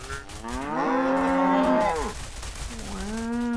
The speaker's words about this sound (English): Okay, it's a cow party. That looks like some cows. Oh my gosh, they're like doing a ritual in the... Okay, here we go, fam. Oh, we're a cow family. Oh, now you got three cows. Oh, how many cows can I collect?